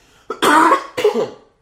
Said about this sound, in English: Another thing about me that you have to figure out, you'll have to learn, is that I cough in the morning. It's a thing. It's like a thing that I've always, since I was like 8, I've always woken up just gagging.